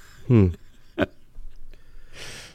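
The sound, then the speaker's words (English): A short, loud burp lasting about a quarter second, low and throaty, followed by a faint click and a soft breathy exhale. “Belch. I did. I'm sorry.”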